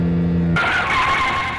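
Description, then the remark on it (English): A car engine hums steadily, then tires suddenly break into a loud, sustained screech as the brakes are slammed on and the car skids by a roadside overlook, without any voices. “Pat had slammed on the brakes to give us a chance.”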